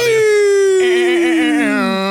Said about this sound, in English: I need to put an air horn sound on this.